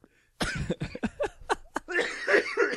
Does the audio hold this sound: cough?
yes